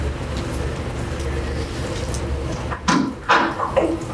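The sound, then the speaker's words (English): A door is closed: a couple of short wooden thuds and a latch clunk close together, over a steady low room hum. “can you close that door there?”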